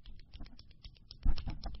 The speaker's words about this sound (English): if you don't stop clicking your pen, I'm going to get homicidal. That frequency makes me crazy.